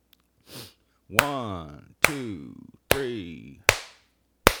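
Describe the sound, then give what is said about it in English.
Five sharp, loud hand claps, made by a group clapping together to sync audio before recording, land roughly once per second, several quickly followed by short, falling vocal sounds from people, with a soft breathy noise before the first clap. “Let's speed that up a little bit. Clapping again.”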